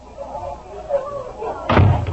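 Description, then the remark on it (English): The front door of a white frame house on Maple Street is opened and then shut with a heavy thud near the end as a man steps through, following a stretch of faint, muffled background murmur. “as Jim Anderson steps through the front door”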